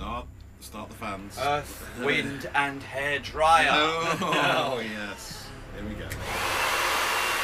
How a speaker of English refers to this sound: Start the fans. Earth, wind, and hair dryer.